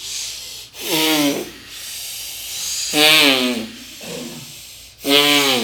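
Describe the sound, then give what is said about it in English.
Three loud, rasping breaths drawn in through both nostrils during a guided meditation breathing practice, each a broad hiss with a rough, falling voiced edge, separated by quieter airy pauses. “And now bring the right hand down with both the nostrils together, long in the hissing breath.”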